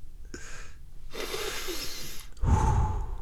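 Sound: heavy breathing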